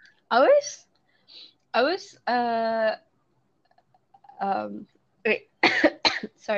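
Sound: sneeze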